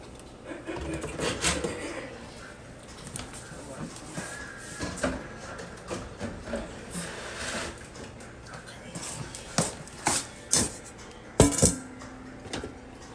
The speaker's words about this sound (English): Thank you for washing these little dishes, too.